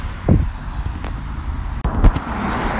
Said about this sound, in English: Okay. I'm just gonna go across the road. There's a lot of cars, so I'm gonna have to pause it so I can pay attention.